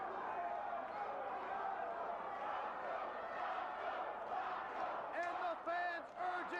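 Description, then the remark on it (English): A large arena crowd at a wrestling match roars and cheers continuously, a dense wall of voices, with louder individual shouts and chants rising near the end. “All right, so they're hyping the crowd up.”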